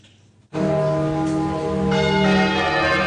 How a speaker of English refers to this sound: The peal of the Great Paul Bell, the largest church bell in the country, rang as the royal family arrived for the service of Thanksgiving.